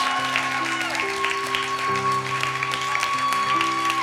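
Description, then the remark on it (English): Women cheer on a group of men, clapping steadily for about four seconds, a dense wash of applause and whoops layered over sustained keyboard chords that shift pitch a few times. “Can all the ladies cheer these guys on right now?”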